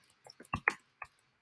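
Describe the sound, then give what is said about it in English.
A handful of keyboard keystrokes clack at an irregular pace, five or six taps, with short quiet gaps between them and no talking. “And I'm sorry, I'm typing as I'm speaking in order to make this move a little bit faster.”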